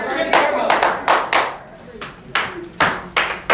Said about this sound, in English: Alright, we can stop the claps now. Yeah, guys. But, good try.